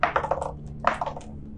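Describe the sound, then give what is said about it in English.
Dice rattle and clatter across a table in two quick bursts for an attack roll made at advantage in a game: a flurry of hard, bright clicks that tumble and settle, with a short pause between the rolls and no talking. “All right, make an attack roll at advantage.”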